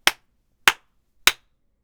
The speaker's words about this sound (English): Now I'll go ahead and tap my desk to see how much of that noise the provided mount is able to reject.